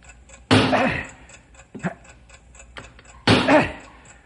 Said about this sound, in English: the timing device is in between the chemical chamber and the explosive. You've got to drive that wedge in there and stop that ticking.